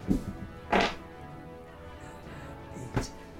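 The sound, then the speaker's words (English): Dice rolled for initiative in a tabletop game knock onto a tabletop in a few separate hard thunks, a quick pair at the start and another after a quiet pause, with no talking. “So, what I'm going to do is I'm going to roll an initiative for the guys.”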